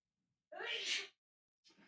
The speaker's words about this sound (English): I hope I have a mute for this. I need to sneeze.